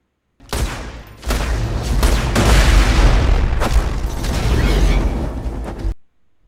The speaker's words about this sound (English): Okay, it is my favorite gun in Borderlands 2, the Sunny Blockhead.